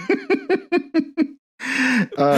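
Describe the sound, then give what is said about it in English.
A quick run of six rhythmic, voiced laughing bursts, then a pause and a sharp, breathy gasp of surprise, ending in a strained, voiced exhale. “I gasped because my name was also supposed to be Nicholas.”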